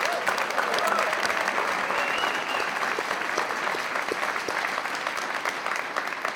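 Sustained applause from an evening audience for a musician, a steady dense wash of many hands clapping at an even loudness for several seconds, with no clear pauses.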